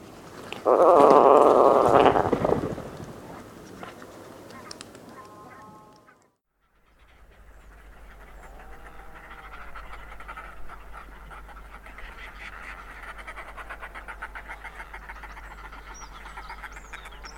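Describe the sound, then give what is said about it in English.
Atlantic puffin grunts and growls: a loud, rasping growl bursts out near the start, then after a short silence fainter guttural grunts repeat over a steady background murmur. “They also give several grunts and growls.”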